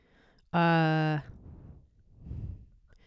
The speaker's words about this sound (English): Sorry about the breathing. I feel like I haven't done this in a while. And I had coffee, so my heart's kind of going. That's annoying. I'll stop.